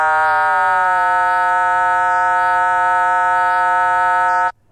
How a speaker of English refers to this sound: And you hear various tones as I change the frequency of the control oscillator. Hear various tones above and below the audio tone. These are called combination tones.